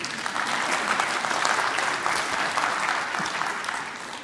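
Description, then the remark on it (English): An audience applauds steadily for several seconds, a dense, even wash of many hands clapping that holds at a fairly loud level and eases off slightly toward the end. “Go ahead, you can clap.”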